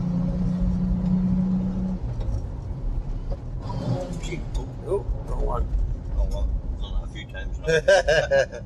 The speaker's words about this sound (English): and we're driving.